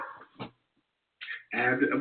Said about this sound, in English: My puppy is listening to your puppy, so we may have a chorus in about a second or a duet. They're singing. They'll be singing.